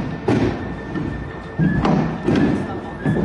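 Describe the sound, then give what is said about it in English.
Heavy hailstones the size of baseballs strike a roof in Arkansas in a handful of loud, dull thuds at irregular intervals, each a deep booming impact over a steady background hiss with a faint high whine. “And they show the video out the window of these giant hailstones the size of baseballs landing on the roof.”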